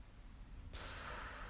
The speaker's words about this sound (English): I found a snoring sound effect on YouTube.